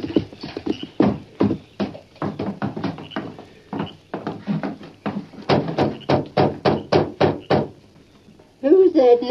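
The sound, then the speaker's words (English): Loud, insistent knocking by a sheriff on the door of a farmhouse at night, in quick repeated bursts, pausing briefly and then resuming even harder, followed at the very end by a short voice. “Knocking at this time of night?”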